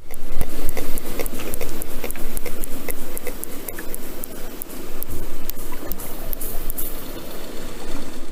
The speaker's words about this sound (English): And this strategy is echolocation, basically biological sonar. When hunting, they send out a series of clicks called click trains.